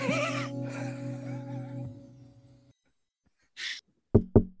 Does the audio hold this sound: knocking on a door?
yes